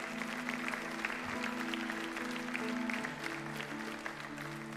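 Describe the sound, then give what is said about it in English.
A large audience claps steadily and warmly for several seconds, applauding people who stood to respond to Jesus, the dense applause over sustained, soft musical chords playing underneath. “Let's applaud these people.”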